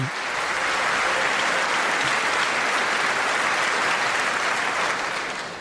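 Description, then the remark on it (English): Sustained applause from a large audience at a speech, a dense wash of clapping that holds steady at full strength for several seconds before easing slightly at the end, with no voices over it. “That is an actual good applause line.”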